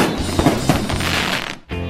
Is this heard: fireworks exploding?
yes